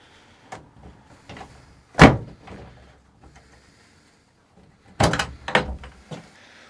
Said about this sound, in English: And so we continue. Ah, this is the final door. The latch. I don't know. Should we do it?